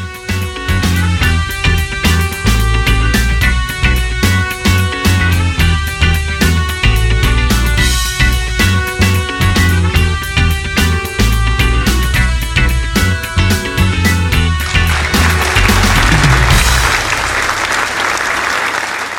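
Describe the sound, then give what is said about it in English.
Audience applause over upbeat music with a steady beat; the clapping swells into a dense, loud wash near the end as the music fades. No one speaks. “Those applause are actually not for me. They're for you.”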